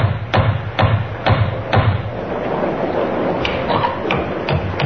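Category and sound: impact, knocking on a door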